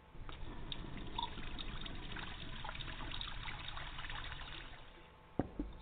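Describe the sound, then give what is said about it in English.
A thin, steady trickle of water running from a tap in a house with poor water pressure, continuous, with a small clink near the end as the flow tapers off. “Flash house, but the water pressure sucks.”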